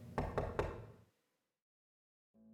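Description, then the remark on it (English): An apartment door is locked on three separate locks: three quick, evenly spaced metallic clunks over a low resonant rumble that fades out, followed by silence and a brief low tone at the end. “He locked the door behind us on three separate locks.”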